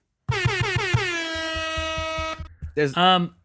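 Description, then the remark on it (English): A loud air horn sound effect, played from a soundboard, blares with a pulsing, stuttering start that settles into a long sustained honk, cut off abruptly and followed by a short burst of shouting voices. “Yeah, and by the way, every time he slaps that board, you can't hear a sound on Instagram because it's a soundboard that's on our podcast.”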